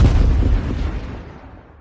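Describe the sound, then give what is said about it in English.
A loud, deep explosion sound effect, edited in, bursts at once and rumbles heavily through the low end, then fades away over about a second and a half with no voices present. “You ready for this molten hot take, which might also get an explosion edited in?”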